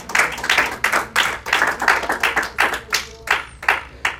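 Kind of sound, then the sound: crowd, audience applauding loudly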